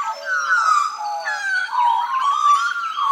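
A magpie carols in a loud, continuous warble of fluting, gliding notes that overlap and bend up and down, with no voices around it.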